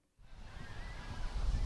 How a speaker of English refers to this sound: It's a good beach day at Friendship Park. People are playing in the waves that splash against the steel border fence stretching into the Pacific Ocean, where Tijuana meets San Diego.